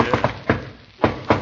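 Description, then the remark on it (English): A husband knocks on a door in his distinctive, recognizable pattern: two quick raps, a third, a short pause, then two more spaced knocks, all sharp and fairly loud with no talking. “There's something about the way he knocks that I can always recognize.”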